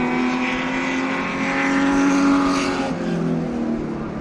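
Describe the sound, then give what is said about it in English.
Three vintage race cars roar past together during a race, their blended engine notes rising and falling in a continuous, loud drone that swells in the middle and eases slightly toward the end. “That's 1, 2, 3 cars going at once, and the sounds blending.”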